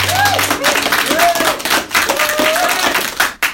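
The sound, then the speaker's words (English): A crowd applauds with dense, steady clapping that fills the whole stretch, with faint voices and a whoop rising over the claps before the applause thins out at the end. “I was delighted by how generally unprepared some of you were for that applause, particularly those of you who had alcohol in your hand.”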